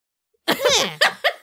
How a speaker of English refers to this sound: I sneezed okay. again. I'm sorry.